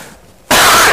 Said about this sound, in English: Apologize for coughing with a microphone.